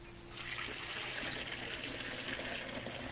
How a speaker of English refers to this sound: Now, to put some water in the tea kettle.